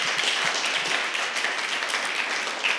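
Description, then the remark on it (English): A crowd claps steadily for the veterans among them on a cold winter morning, many hands overlapping into a dense, even wash of applause that stays loud and sustained without pause for the whole stretch. “Yeah, let's give it up for them.”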